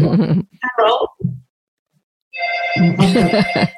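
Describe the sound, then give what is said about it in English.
A phone ringtone from an incoming call starts up after a brief pause, a steady electronic tone that keeps sounding as people talk over it near the end. “So, somebody's calling you.”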